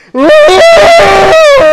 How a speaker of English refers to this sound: It's entitled Male Scream.